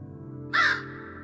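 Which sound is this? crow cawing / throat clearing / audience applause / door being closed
crow cawing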